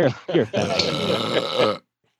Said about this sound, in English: Don't burp on your podcast.